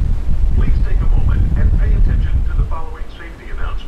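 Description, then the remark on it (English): Steady low rumble of the Staten Island Ferry's engines and wind in New York, a passenger boat, with indistinct chatter and voices scattered through the background noise. “As you can hear, I am not in a recording studio today. I'm on the Staten Island Ferry in New York, and today we're going to learn about how boats float.”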